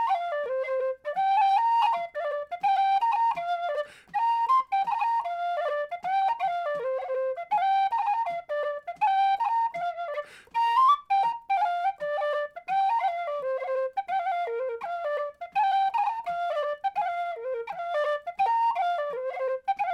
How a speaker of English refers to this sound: so here it is on Whistle, The Night We Had the Goats from Eliza Ross's 1812-ish manuscript